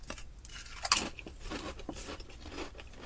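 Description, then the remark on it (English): Uncle Ray's thin-cut potato chips being crunched: one sharp, bright bite early on, followed by a steady run of crisp, crackly chewing with no talking. “These don't taste like potatoes per se, because maybe because they're so thin, they're not as crunchy.”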